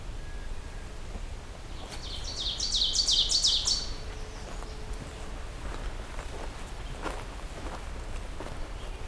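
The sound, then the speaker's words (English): A nuthatch calls in a park in a quick, high-pitched burst of repeated notes lasting a couple of seconds, over a steady outdoor background with faint footstep-like sounds. “I was wondering what that sound was. That is the nuthatch as well.”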